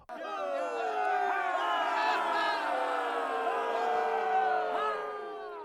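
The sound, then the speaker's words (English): A large crowd of sailors on a ship cheers and shouts continuously, many overlapping voices rising and falling in pitch, loud and sustained for several seconds before easing slightly at the end. “King Nile added as the sails erupted into even more cheers.”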